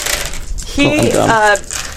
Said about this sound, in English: All right, get your dice out. Yep. All right, very good. And roll your dice.